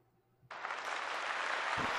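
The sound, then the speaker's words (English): Crowd applause bursts in after a brief quiet moment, a dense, steady wash of many hands clapping that holds loud and even through to the end. “They're happy, fine, though. The crowd's happy.”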